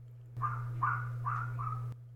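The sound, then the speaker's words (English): A neighbor's dog barks four times in a steady, evenly spaced rhythm, each bark short and mid-pitched, over a constant low electrical hum with no talking. “Our neighbor's dog is very excited to talk about Batwoman.”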